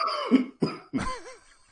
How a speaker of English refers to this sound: I'm sorry, I've developed a little bit of a cough. I got a little cough.